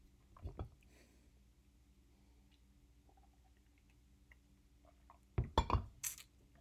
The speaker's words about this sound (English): It's also delicious. I'm gonna have another sip, excuse me.